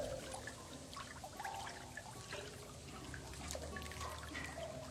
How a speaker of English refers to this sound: And the rats begin to jump into the water.